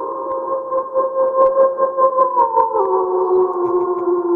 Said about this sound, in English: This howl's for you.